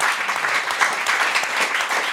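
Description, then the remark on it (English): Steady applause from an audience of about 600 people at a live show at Music Workshop, a dense wash of many hands clapping at a constant, fairly loud level throughout, with no voices standing out. “I'm even thinking about putting a little applause sample right there.”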